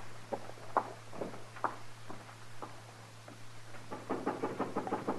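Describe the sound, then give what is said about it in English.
Boot heels clomp across a hard floor, a slow uneven walk that quickens into a steady run of sharp steps, over a low constant hum. “Your heels, Chester. Be quiet.”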